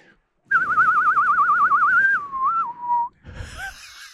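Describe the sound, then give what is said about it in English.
A person whistles, starting with a rapid warbling trill, then gliding down to a few sustained notes before stopping, followed by a brief breathy rustle. “I'm going to go for a whistle, if you'll allow it.”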